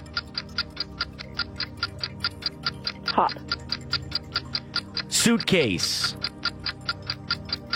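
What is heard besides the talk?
game timer ticking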